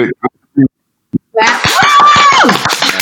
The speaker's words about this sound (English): Bravo, bravo, clap, clap, clap.